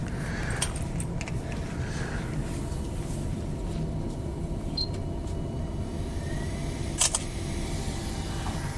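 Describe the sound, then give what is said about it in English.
A single crisp camera shutter click, a quick double-snap, as a picture is taken of a printer's display, which says it is heating up and preparing to print a Kindle Paperwhite. It rings out over a steady low machine hum, with a few fainter ticks earlier. “So I'll get a picture of the display there.”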